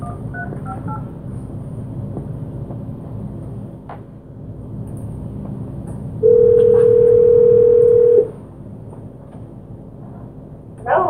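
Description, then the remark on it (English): While a phone call is placed during a council meeting, a steady, loud telephone tone sounds for about two seconds over a low background hum, preceded by a few faint beeping dial tones, with no one speaking. “We were actually to get Councillor Downing on the phone.”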